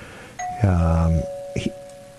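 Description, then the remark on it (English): A doorbell chimes once, a low buzzy tone followed by a clear ringing note that lingers and slowly fades, with a couple of short knocking clatters near the end. “His idea was largely based on the idea that a burglar tends to ring the bell before breaking in.”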